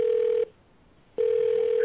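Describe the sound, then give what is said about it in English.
A telephone disconnect tone after a call ends: two long, steady, low-pitched beeps separated by a brief pause, loud with faint line hiss underneath. “The person you called is no longer on the line.”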